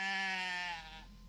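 A single goat bleats loudly, a long wavering cry lasting about a second before trailing off, with no other sounds around it.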